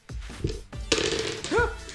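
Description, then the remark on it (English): Dice rolled for damage clatter onto a hard floor: a quick series of sharp clicks and bounces over about two seconds, with a brief vocal sound near the end. “I just rolled dice. 12 damage. Rolled dice onto the floor.”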